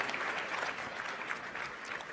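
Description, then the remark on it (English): Sustained applause from an audience clapping for themselves, a dense wash of many hands clapping at once, steady and fairly loud throughout with no voices standing out. “Give a round of applause yourselves because you got here.”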